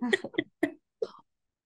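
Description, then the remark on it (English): Four short, throaty burps from a gassy woman with big puffy cheeks, bunched together in about a second, each a brief voiced gulp, followed by silence. “She keeps burping with big puffy cheeks.”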